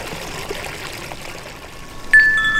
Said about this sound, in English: That was some wind chimes from my parents' house and some running water from a creek right near my apartment. I recorded water from a creek near my house. It's just so soothing.